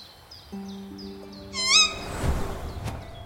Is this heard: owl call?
yes